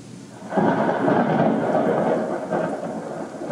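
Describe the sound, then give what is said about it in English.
A deep, sustained rumble of rolling thunder from a storm swells in after a moment and keeps churning, with a steady hiss like rain beneath it and no voices. “Only the rolling storm remains.”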